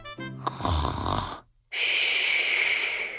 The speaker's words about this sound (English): Just then, a soft snore could be heard coming from the bedroom. Huh? The sound? That's Hasty snoring.